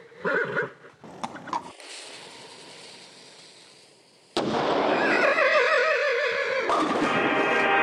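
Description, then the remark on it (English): A horse, Ernest the Equestrian Cannonball, whinnies in short bursts as it aims its cannon, lights the fuse and climbs inside; the cannon fires with a sudden loud boom that settles into a sustained roar while the horse keeps neighing, in a cannonball bowling contest. “The horse aims its cannon, lights its fuse, and climbs inside.”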